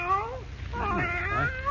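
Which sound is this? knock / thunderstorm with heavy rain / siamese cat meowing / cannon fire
siamese cat meowing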